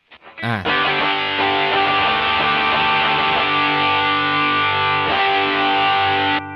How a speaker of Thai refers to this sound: นี่คือเสียงแตกจากเอฟเฟคก้อน ครับ ครับซึ่งก็คือมันพยายามจำลองการแตกของของแอมป์กีตาร์แหละคือมันจะขับไปอยู่ที่จุดที่พีคที่สุดแล้วมันก็จะเสียงมันก็จะบี้พลาอะไรอย่างเงี้ยซึ่งเขาก็จะไว้ใช้ในเพลงล็อกต่าง ๆครับ